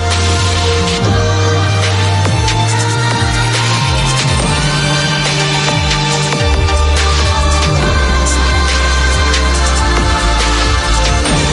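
An electronic music remix plays steadily and loud, with a deep, pulsing bass line stepping between notes beneath dense synth layers and bright percussive hits. No one speaks.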